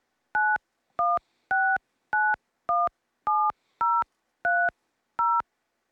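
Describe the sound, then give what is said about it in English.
A touch-tone phone keypad beeps out a 10-digit callback number while the caller waits in a phone queue, ten crisp dual-tone presses in a steady, even rhythm, clear with short silences between and no voices. “Or remain on the line, please enter your 10-digit phone number.”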